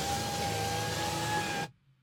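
A car's power window motor whirs steadily as the window opens, with a high, humming whine for under two seconds, then cuts off abruptly into quiet.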